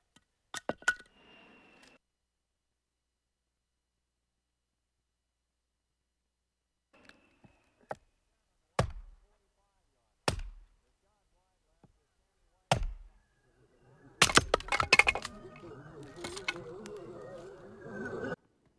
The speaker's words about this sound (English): knocking apart logs in need for a winter.